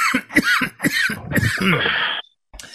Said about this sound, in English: Is coughing a lot after a bong hit good for a podcast?